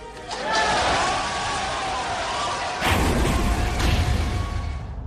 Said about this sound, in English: And the prison doors slam.